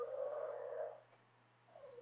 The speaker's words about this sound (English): I'm hearing a dog. Yeah, Frank's in the room with us because if he's not within an arm's reach of us, he screams. Okay. He's kind of reached that age. He can't walk. He's got one eye but can't see out of it. He can't really hear